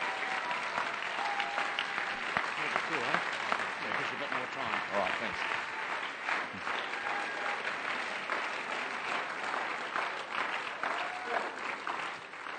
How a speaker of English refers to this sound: Let's give him a great clap as he comes up to minister.